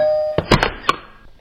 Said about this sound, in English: You ring the doorbell and a woman answers.